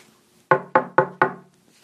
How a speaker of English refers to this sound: Knock on wood. Oh, these walls are cement? Jesus Christ.